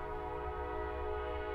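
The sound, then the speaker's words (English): A train passes with a low, steady rumble beneath sustained, droning horn-like tones that hold at an even level throughout, with no voices. “Is that a train? Yeah.”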